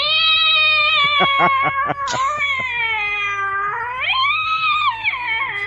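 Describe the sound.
A person imitates the cat Buttercup dying with a long, strained, high-pitched yowl. It stutters in quick pulses early on, then sags low and swoops up into a drawn-out, wavering wail.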